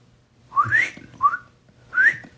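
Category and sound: human body sound, person whistling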